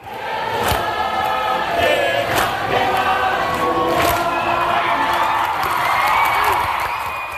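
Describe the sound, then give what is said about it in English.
A crowd of Fijian rugby league fans sings together to celebrate their team's latest World Cup win, a dense, steady wall of voices with sustained melodic lines and occasional sharp shouts and whoops, loud throughout. “The Fijian fans singing to celebrate their team's latest World Cup win.”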